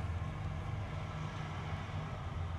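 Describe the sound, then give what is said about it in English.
A truck rumbles past outside, its deep, steady engine drone muffled and continuous throughout, with no voices over it. “Truck.”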